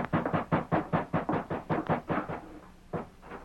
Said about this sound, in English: Then shut the door there. I hear hoofs coming now. Maybe that's Morton.